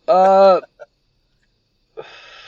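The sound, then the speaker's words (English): A tired person lets out a loud, drawn-out yawn with a strained, voiced tone, followed by a small vocal catch and then a softer breathy exhale trailing off. “Hold on, I'm yawning.”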